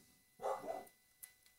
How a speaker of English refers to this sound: And I hope the great dog chorus in the background is not bothering you too much.